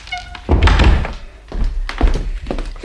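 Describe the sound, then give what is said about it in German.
A loud thunk as a door flies open, followed by a few heavy stomping steps at an uneven pace as a man walks in. No one speaks. “In diesem Augenblick flog die Tür auf und Herr Sauerlich stapfte herein.”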